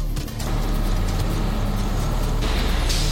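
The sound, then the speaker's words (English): A car rumbles with a steady, loud engine and road drone, then the noise shifts and roughens near the end as the car breaks down on the road. No one speaks. “Our car broke down.”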